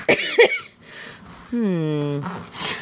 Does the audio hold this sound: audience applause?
no